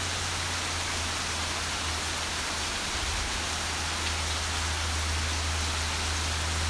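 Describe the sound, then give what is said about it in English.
Steady rain patters on leaves and ground, forming trickling tiny streams, a dense continuous hiss of drops with a low rumble underneath, evenly sustained throughout with no voices. “There's something serene about sitting still and listening, just listening to the raindrops fall on the leaves, hit the ground, hear the trickle of tiny streams formed”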